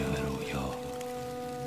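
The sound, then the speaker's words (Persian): Steady rain hisses evenly throughout, a soft continuous patter with no distinct drops standing out, while low sustained musical tones hum quietly beneath it. “آره بارون می اومد، خوب یادمه.”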